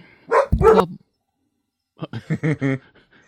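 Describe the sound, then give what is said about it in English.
A dog barks loudly, two deep barks first, then after a short pause a quicker run of four or five sharper, higher barks. “Is that Jay's dog?”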